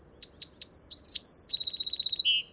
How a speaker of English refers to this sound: Surprise, it's actually a wren, more accurately, a Buick's wren. Looking like a pale-colored version of the Carolina wren, this species is common in Texas and over much of the Southwest.